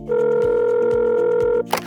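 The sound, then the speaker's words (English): A telephone ring tone sounds steadily for about a second and a half, a sustained electronic trill with a faint pulsing beat, then cuts off abruptly with a brief click as a listener's call to the Real Time Hotline is picked up. “Hey, remember his advice to pick up the phone? One of our podcast listeners did just that.”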